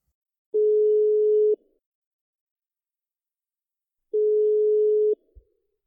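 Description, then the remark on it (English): A phone line's ringback tone: two steady, buzzing tones about a second long each, separated by a few seconds of silence. The tones are clear and alone, with a faint click at the end. “You're going to pick up this phone.”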